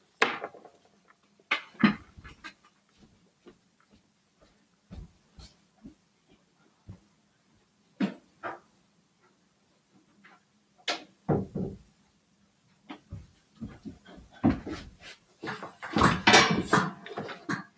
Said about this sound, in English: Sorry, guys. I had to close my door.